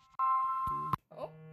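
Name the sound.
phone ringing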